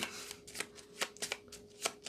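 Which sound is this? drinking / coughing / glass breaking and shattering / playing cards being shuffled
playing cards being shuffled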